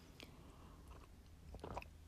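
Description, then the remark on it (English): Quiet mouth noises of someone sipping a cup of tea: a soft slurp early on, then a cluster of wet swallowing and lip sounds near the end, with no talking. “Sorry, just having a sip of my lovely tea there.”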